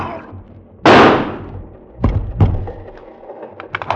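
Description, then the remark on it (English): A single loud gunshot, fired in a dim train compartment, bursts out and rings off in a long fading roar, followed by two sharp, quieter knocks and a scatter of faint clicks. No one speaks. “I raised the gun.”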